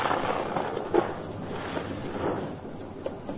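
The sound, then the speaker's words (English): A heavy afternoon storm along a river trail roars steadily with dense, hissing noise, broken by a few sharp cracks of thunder, the strongest about a third of the way through. No one speaks. “That afternoon, a heavy storm broke as the two men followed the river trail.”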